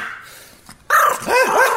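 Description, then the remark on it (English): A tiny yip-yip dog, a female about 5 years old, barks loudly, a sharp bark followed by a longer, wavering yelp-like bark, with quieter background noise before it. “What do you mean that dog's awesome?”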